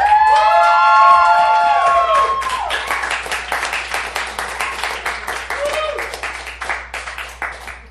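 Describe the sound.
A crowd bursts into loud cheering and whooping, with high excited voices at first, then settles into dense, rapid clapping that continues steadily to the end. The audience is applauding to vote for the winner of a debate.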